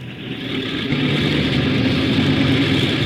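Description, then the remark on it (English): An airplane engine starting up during engine checks before takeoff, a loud droning roar with a steady low hum that builds slightly in the first moment and then holds constant, with no voices. “Port engine two, starboard engine one.”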